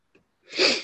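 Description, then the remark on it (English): A faint catch of breath, then one loud, harsh burst of noisy air like a cough or heavy sniffle, swelling and fading within a second, with no talking. “I just have a chronic ability to sniffle and cough my way through life.”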